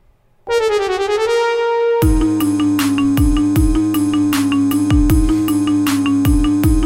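A phone ringtone plays a brassy TV-style theme tune, opening on a held, swelling note before a steady, punchy beat kicks in. It's loud and close, with no voices.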